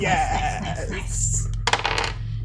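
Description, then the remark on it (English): Dice clatter onto a hard tabletop in a short burst of rattling clicks that tumble and settle within about half a second, landing on a 9, after a faint murmur of voices and a steady low hum. “That is a 9 on the dice.”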